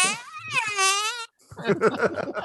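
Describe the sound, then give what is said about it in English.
A loud, buzzy mouth-made fart noise stretches for about a second, wavering in pitch, then cuts off; after a short pause, people burst into choppy laughter. “Let's just make a fart noise and make everyone laugh.”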